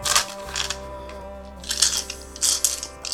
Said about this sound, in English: Well, that is all of your attraction and bonus dice. You want to give those a roll?